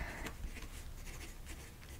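Pen or pencil scratching across paper in a steady stream of soft, textured strokes, with a few brighter scrapes standing out; quiet and continuous, no voices.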